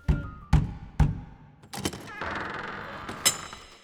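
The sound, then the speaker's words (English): Three firm, evenly spaced knocks on a door at Gatsby's house, followed by a latch clicking and the door swinging open with a steady rushing scrape as a butler opens it, ending on a sharp click. No voices. “The door was opened by an unfamiliar butler with a villainous, squinting face.”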